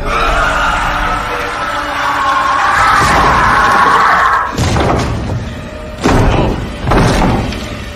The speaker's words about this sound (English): All of a sudden, the chair just starts to flip upside down while it has her in it.